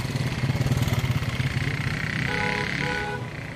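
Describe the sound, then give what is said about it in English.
An Okada motorbike taxi engine putters steadily on a street in Calabar, its low throaty pulse continuous throughout, with a faint higher tone briefly rising near the end. “Unlike Lagos, Calabar felt safe enough to use the Okada, the motorbike taxis that everyone gets around on.”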